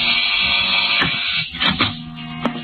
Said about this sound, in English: I looked at the names on the mailboxes. 9 apartments in the building. Well, one way to get in was to push all the buttons and wait for the door to click open.